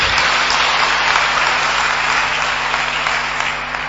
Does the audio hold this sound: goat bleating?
no